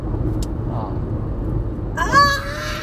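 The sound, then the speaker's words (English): A large bird that looks like a hawk lets out one loud, harsh screeching call lasting about a second, heard from inside a car, over a steady low rumble like an idling vehicle. “That's the noise it makes. Yeah, no wonder it's terrifying.”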